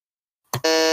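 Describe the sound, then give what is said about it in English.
A sudden, loud quiz-show buzzer blares after a short silence, preceded by a brief click, then holds a harsh, steady, harmonically rich drone to the end with no voices. “You don't even have to buzz.”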